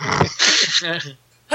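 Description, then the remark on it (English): A single loud sneeze from a person recording at a microphone setup: a short voiced intake followed by a sharp, hissy burst that trails off into a brief groan, then quiet. “This setup is hard to mute on a sneeze.”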